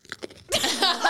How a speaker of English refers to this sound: We just spent at least 2 minutes feeling utterly perplexed because we were all trying to record and we heard this loud crunching sound. Should I play it for you? We heard this.